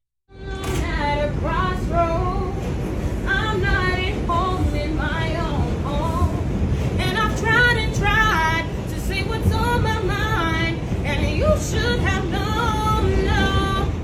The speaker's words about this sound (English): Let's hear her singing, belting out on the subway.